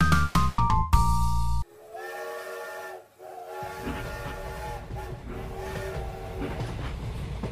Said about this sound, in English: You're on board the train to hell.